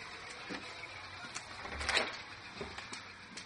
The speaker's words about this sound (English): Coming back into our house here in Redmond, Oregon. A gurgling you hear. Off to the left is a fish tank.